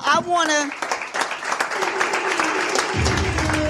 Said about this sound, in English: And so give yourselves a round of applause.